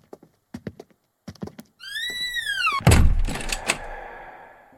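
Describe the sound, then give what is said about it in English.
A few light clicks, then a hinge squeals in a long creak before a door that will not stay open slams shut with a heavy thud that rings out briefly. No one speaks. “The rest of the doors stay open. Why not this one?”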